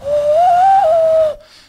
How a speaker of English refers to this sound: But we are sitting around this campfire, just like comparing silly like talents and stuff. Like I can turn my elbow like the wrong way, and I can do this hand whistle.